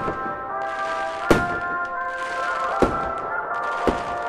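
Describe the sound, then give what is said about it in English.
Three sharp fireworks bangs burst out at irregular intervals over a sustained, bright tonal fanfare-like drone; the pops are punchy, with no talking. “So you're standing around and you see some fireworks go off.”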